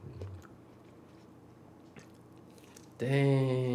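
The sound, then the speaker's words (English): Quiet chewing of a dipped chicken nugget with soft wet squishes and faint clicks for about three seconds, then a voice abruptly breaks in loudly over it. “She went for that nugget that I dipped, that I over dipped.”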